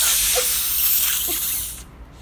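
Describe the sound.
A voice imitates a snake's hiss: one long, steady, breathy hiss held for nearly two seconds, moderately loud, then cutting off abruptly into quiet.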